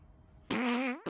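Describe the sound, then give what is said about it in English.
A loud fart rips out after a quiet moment, a buzzy, steady-pitched blast lasting about half a second that bends upward at the end, with another short burst starting right after. “You're not going to edit in fart noises, are you?”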